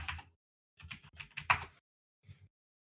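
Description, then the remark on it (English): Rapid, forceful, angry typing on a computer keyboard as someone looks something up, in three quick bursts of clacking keystrokes separated by brief pauses, with no talking. “I can hear you angry typing.”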